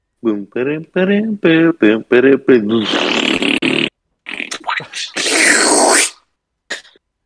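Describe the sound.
A person vocally imitates a video game's sound effects as farts: a quick run of short, buzzy, pitched blurts, then longer wet sputtering raspberries, loud, ending with one brief puff.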